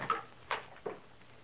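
The door of a home, just unlocked with a key, swings open, marked by three soft wooden clunks spaced about half a second apart, quiet, with no one speaking.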